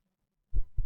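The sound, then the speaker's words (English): Two deep, muffled thumps of a heartbeat in quick succession, low and booming, after a brief moment of near silence. No voices. “Why can I hear someone's heartbeat?”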